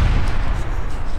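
A loud explosion sound effect, a deep, sustained low rumble and roar that fills the whole short moment at steady intensity, with no voices.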